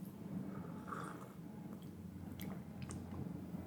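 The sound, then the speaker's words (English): Someone tasting a bark broth, with soft wet slurping and chewing mouth sounds and a few sharp little clicks over a steady low hum. Nobody speaks. “Let's try this bark broth.”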